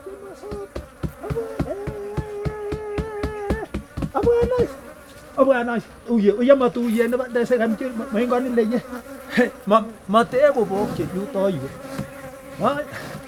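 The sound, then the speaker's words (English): A dense swarm of bees drones around a hive, the buzzing steady and layered at first, then swelling and wavering in pitch after a brief lull. “Here are bees.”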